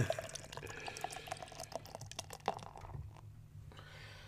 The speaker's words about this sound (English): Woo, look at that pour. Actually, that was a horrible pour. Mine was a fucking stellar pour.